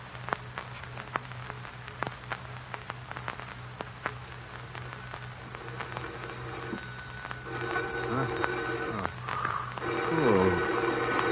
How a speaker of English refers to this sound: Phone. Who could be calling at this hour? Now, where's that phone?